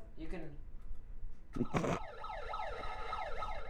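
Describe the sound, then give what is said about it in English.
A handheld electronic siren alarm with a volume slider wails in quick, repeated up-and-down pitch sweeps, loud and steady, after a brief burst of talking and a short clattering noise. “You can turn the alarm up and down.”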